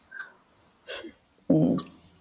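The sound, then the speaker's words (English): Two harsh, breathy coughs with a short pause between them: the first is moderate and brief, the second louder and rougher, ending in a higher rasp. No one speaks. “I never get sick, but I'm just insanely coughing lately.”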